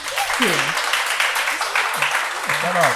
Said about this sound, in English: I made it for Metro Parent for autism mom. Can we clap it up for that?